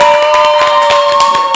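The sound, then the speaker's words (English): Loud, dense applause from many hands, a continuous clatter of overlapping claps throughout, with a steady sustained tone running underneath and no one talking. “One more time for Ralph Angel. Let's get the applause in there.”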